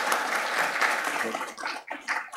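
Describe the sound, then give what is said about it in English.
A crowd in a church applauds the Scouts on Scout Sunday in a dense, steady wash of many hands clapping indoors, fading into scattered claps and a few voices toward the end. “So you will get a chance to give the Scouts a round of applause.”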